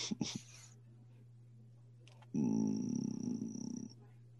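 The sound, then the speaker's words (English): Dogs eating the dinner just fed to them at 5 o'clock: a brief clatter, then about a second and a half of loud, rough, snuffling and growly noise over a steady low hum, with no talking. “I think my wife just fed the dogs.”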